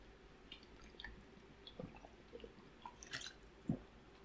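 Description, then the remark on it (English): Someone drinking water: quiet sips, swallows and small wet mouth clicks scattered over a few seconds, ending with a slightly louder gulp, with no talking. “Give me just a second. I need some water.”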